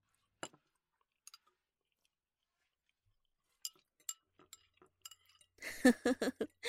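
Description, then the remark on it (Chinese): Sharp, scattered clinks of bowls and chopsticks during a meal, a few isolated taps at first, then a busy burst of clattering tableware near the end, with no one talking. “来，给你碗筷，喜欢吃什么就夹什么，千万别客气。”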